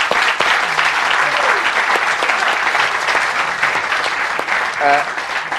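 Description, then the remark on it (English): A crowd at the St. James Theatre claps steadily and loudly for several seconds in applause for the theatre staff, a dense, continuous patter of many hands with a brief cheer or whoop rising near the end. “And please, a round of applause for all the staff,”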